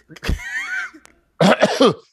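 A loud cough with a rough, drawn-out throaty tail, then after a short pause a quick run of three harsh, voiced coughs.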